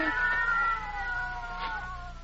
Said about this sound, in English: What's that? Cats. No, I'll break that up.